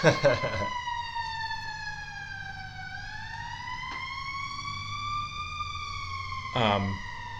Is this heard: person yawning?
no